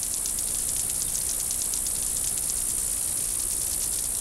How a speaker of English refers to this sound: The vein flexure generates an audible snap, like a dog's training clicker. The grasshopper's loopy flight generates a train of snaps.